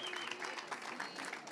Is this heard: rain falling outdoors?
no